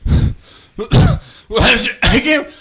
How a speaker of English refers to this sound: Wash realizes that it's him coughing.